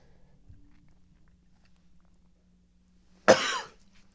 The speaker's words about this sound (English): I'm now coughing. Like, we're not editing shit here. This is as real as it gets.